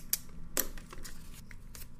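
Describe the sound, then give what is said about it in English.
Quiet scratching and rustling as someone writes A and D on two pieces of paper, with a couple of brief, sharper crinkles standing out against a low background hum. “One piece of paper is A. I write A. Other piece of paper, I write D.”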